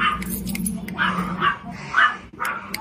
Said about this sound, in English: This lady is, like, not supposed to be in here with her pet, and she's being a Karen. Can you please get out of here if you can't control your dog?